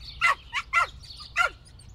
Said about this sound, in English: their small chatty dog, is there to welcome me into their home.